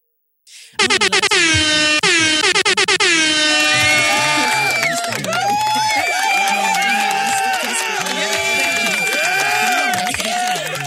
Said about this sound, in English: Brent, give me air horns.